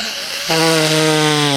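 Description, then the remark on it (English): Someone blows their nose: a soft breathy rush, then a loud, steady, buzzing honk that holds one pitch for about a second before cutting off abruptly. No one speaks. “I have to blow my nose. I'm leaving it in too. You're going to have to listen to it.”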